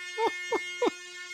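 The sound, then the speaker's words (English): Three quick, blaring air horn blasts in a fast rhythm, with a harsh, buzzy tone that hangs on briefly between hits, played as the Airhorn Multi sound effect from a phone app. “I'm going to get a different one. Airhorn Multi.”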